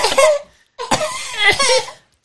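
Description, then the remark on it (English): A person lets out a few harsh, voiced coughs in two bursts separated by a short pause, the later ones rough and throaty, almost like strained laughter. “No, I actually have to cough apparently.”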